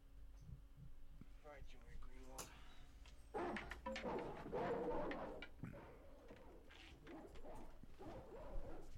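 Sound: dog barking and whimpering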